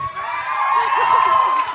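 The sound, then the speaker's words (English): A live audience cheers continuously, a dense wash of many voices shouting and whooping together, steady and fairly loud throughout the brief moment. “I think they're cheering for us.”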